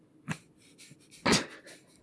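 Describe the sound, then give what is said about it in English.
A short sharp intake of breath, then a loud explosive sneeze onto a microphone that bursts out and quickly fades, with no talking around it. “Thank you for sneezing all over my microphone.”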